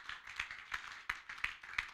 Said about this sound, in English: Oh, clap those hands for the Lord.